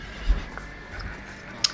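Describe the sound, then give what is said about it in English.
In a film scene, a horse ridden by the character the speakers call Lex Luthor whinnies briefly and fairly faintly over a steady background hum, with a couple of soft thuds and a short sharp sound near the end. No one speaks. “Oh, Lex Luthor on a horse has come to...”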